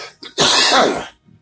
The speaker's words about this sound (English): You see what I mean? It's a live show. I don't have a cough button to, like the pros here, to stop me from doing things.